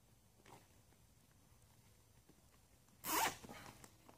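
A zip tie is yanked tight in one quick, loud ratcheting burst, lasting about half a second, with a faint rustle of handling earlier and no talking.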